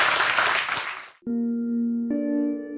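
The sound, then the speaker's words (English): Dense audience applause at the end of a talk fills the first second, then cuts off abruptly and gives way to sustained, tonal music chords. “a big round of applause.”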